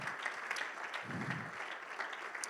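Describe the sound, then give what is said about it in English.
An audience claps hands together in a steady, dense wash of applause, many overlapping claps blending into a continuous crackle at an even loudness throughout. “Well, clap your hands if you believe it.”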